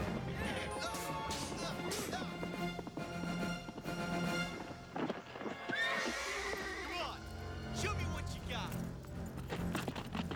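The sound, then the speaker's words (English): Horses whinny and neigh repeatedly while hooves clip-clop underneath, all loud within a dense, busy mix of sound that runs without pause. “And the horses disappear.”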